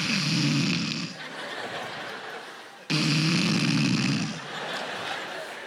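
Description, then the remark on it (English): A voice imitates a father's loud snoring: two long, rasping inhaled snores, each followed by a breathy exhale, repeating in a steady rhythm. “Because we knew my father snores very loudly. So what we did was we timed our steps with the snoring.”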